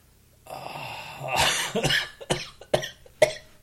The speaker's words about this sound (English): Pretty sick of your cough, dude. When are you going to get rid of it? You're ruining, like, five podcasts by now. Five? Sure, more. Five or six podcasts, you've been coughing like an asshole.